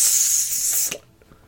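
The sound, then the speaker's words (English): A voice imitates rainwater hitting the blade of a sun sword and evaporating: a steady, bright, breathy hiss lasting about a second, ending in a sharp cutoff, with no words spoken. “There's sort of like a hissing, crackling sound as like the rainwater is hitting the blade of the sun sword and sort of like being evaporated like this.”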